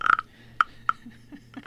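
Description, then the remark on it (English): A wooden frog-shaped güiro, a rasp percussion instrument, scraped by running a stick across the ridges on the frog's back gives several short, buzzy rasping croaks, one sharp scrape after another, each ringing with a bright woody tone, followed by softer, lower scrapes. “It's a güiro, which is like a rasp instrument. It's a percussion instrument.”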